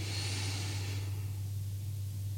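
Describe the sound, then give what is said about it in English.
A deep, airy breath drawn in for about a second during a guided breathing exercise, then tapering off into quiet, with a steady low hum running underneath throughout. “And in”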